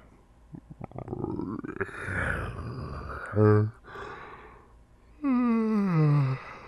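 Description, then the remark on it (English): A voice imitates a sleepy lion's yawn, a breathy rumbling stretch followed by a long, loud, descending groan that trails off, with a short vocal grunt in between. “Lion yawned and thought about it. He was too sleepy.”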